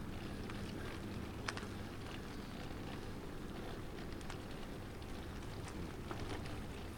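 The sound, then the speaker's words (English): Steady, insistent drizzle patters outdoors, a constant hiss of rain with scattered sharper drop ticks and a low rumble underneath. No one speaks. “Well, the skies are getting ever more leaden, and every time I pull out the microphone, the rain seems to turn itself up a notch in intensity, although it's not exactly a downpour, but it's just a kind of insistent drizzle.”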